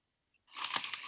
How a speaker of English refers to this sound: Yeah. Impeccable crunch. What flavour?